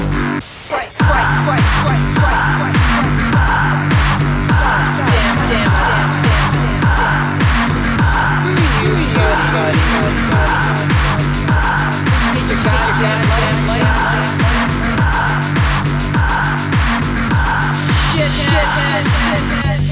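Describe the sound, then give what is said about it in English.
A car that has just been fixed roars off with its tires squealing, loud, the engine and screeching rubber blending into a steady, harsh din that lasts throughout without any talking. “Shut up and watch it drive.”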